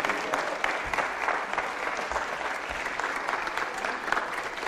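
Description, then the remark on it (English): A crowd claps steadily, a dense wash of overlapping handclaps at an even, fairly loud level with no pauses across the whole stretch. “Come on, clap your hands.”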